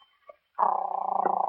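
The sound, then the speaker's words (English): A dog named Lizzie whines in a steady, droning tone that sets in after a brief quiet moment and carries on with a rapid, throbbing pulse until the end. No one speaks. “It's mournful enough without you whining so horribly.”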